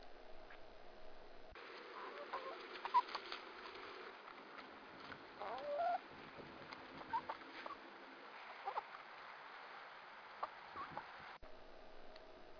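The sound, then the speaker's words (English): Hens feeding close to the mic: quick, irregular taps and clicks as their beaks pick up individual seeds, with occasional soft clucks and rustling over a quiet outdoor background. “And in that case, the mic was close enough to the chickens that you could actually hear them picking up the individual seeds and things like that that they were eating.”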